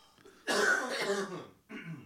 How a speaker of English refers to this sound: Sorry, I'm about to cough.